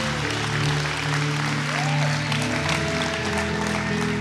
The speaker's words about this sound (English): Come on, we can give a round of applause for that.